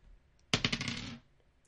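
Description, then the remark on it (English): Dice clatter and rattle across a hard tabletop for about half a second, a burst of quick clicking impacts that settles into stillness, fairly loud. “Please, Dice, I try not to ask you for much.”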